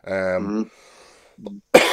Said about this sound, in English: sorry, just a wee bit of, need to clear my throat there.